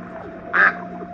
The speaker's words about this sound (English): Well, you said quack. Hey, I didn't say quack.